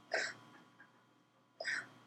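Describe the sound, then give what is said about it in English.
A cat named Darren lazily retches to bring up a hairball without getting up: two short, raspy heaving bursts about a second and a half apart, with quiet breathy gagging between them and no talking. “Darren's sort of like half-assedly hairballing right now.”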